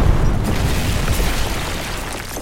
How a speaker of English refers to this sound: The authorities will be here to investigate the blast.